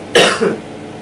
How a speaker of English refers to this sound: Try the little cough, small one.